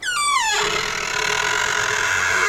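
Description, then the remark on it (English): A house door creaks open, its hinge giving a long falling squeal that settles into a drawn-out, resonant groan. It is fairly loud, with no voices. “The house door swings open.”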